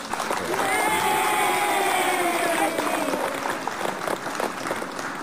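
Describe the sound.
Steady audience applause with scattered cheers and whoops, loud and sustained for several seconds, a dense wash of clapping with some overlapping voices.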